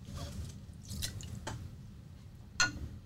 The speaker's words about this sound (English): So I'm going to... here's my gin, by the way. Bombay dry gin. Horrible. Not fun stuff. Oh, you're doing it now. I'm going to pour them all into this glass and see how much goes through it.